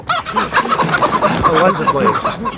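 A flock of chickens clucking busily, a dense, overlapping stream of short squawky calls that stays loud throughout, with no talking.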